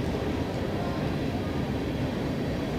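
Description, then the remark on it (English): A steady, low rumbling roar of a train passing beyond right field at a baseball park during a game, heavy in the bass and fairly constant in level, with broad rushing noise and no clear talk. “The train going by in right field, going the other direction today.”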